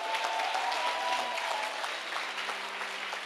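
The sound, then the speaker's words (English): A crowd claps to Jesus steadily and densely, many hands overlapping into a sustained wash of applause with no pauses, holding a fairly even loudness throughout. “Clap to Jesus.”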